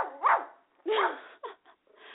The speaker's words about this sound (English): Okay, he's barking at the wind. It could be the wind.